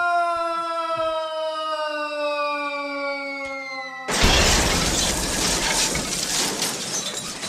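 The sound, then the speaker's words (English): A steady, slowly falling siren-like tone sounds for a few seconds, then a loud crash of smashing glass erupts and a shower of shattering fragments continues to the end. “You could use that glass smashing thing.”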